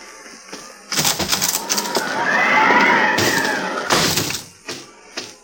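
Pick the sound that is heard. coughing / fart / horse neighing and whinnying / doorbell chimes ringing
horse neighing and whinnying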